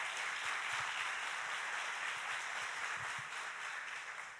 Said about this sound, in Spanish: ¿Cuántos toman esta palabra? Si tú la tomas, dale un aplauso al Señor.